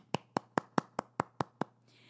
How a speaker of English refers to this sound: I think I deserve a round of applause right now.